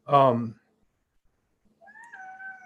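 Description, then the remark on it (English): A cat lets out a loud meow, then after a short silence a second, softer drawn-out meow follows. “Even if their cats drive me crazy.”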